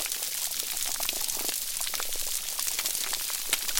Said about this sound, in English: Now, it may just sound like some bubbling, but that's actually fish burping. But what's that crackling sound? Is it just the microphone? Are they near some underwater pocket spurting out air?